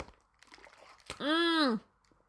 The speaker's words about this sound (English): As I take a giant swig of water there